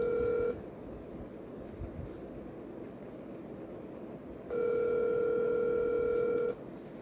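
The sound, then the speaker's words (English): A steady telephone tone sounds briefly at the start, drops out for several seconds of low background noise, then returns for about two seconds before cutting off, like a line ringing out, as a call is placed to a guest. “So let me call up the guest here, as let me get it in here.”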